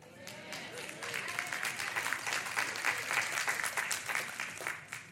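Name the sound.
audience clapping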